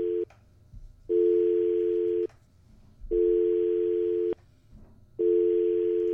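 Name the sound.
telephone dial tone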